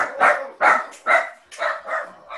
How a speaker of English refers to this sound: That was my dogs. I don't know if he just... I have noise canceling headphones on. They're not coming to the studio when we're back in session. It was probably just a squirrel.